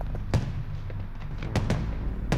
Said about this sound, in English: Sounds like the fireworks are starting. So they are.